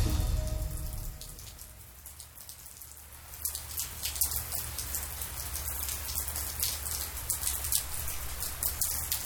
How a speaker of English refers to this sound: Hear that? That is beautiful rain on the patio at midnight last night.